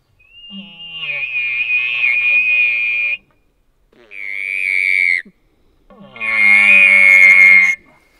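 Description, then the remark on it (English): Three buzzy, high-pitched whining tones made by buzzing the lips into the tube of an elk call, a long one, a short one, then another long one, each steady and loud with short silent gaps between, like a mosquito's whine. “Then we wanna introduce the call and make just a little mosquito noise in there, just to kind of, to get your lips and your tongue and your diaphragm and everything work together.”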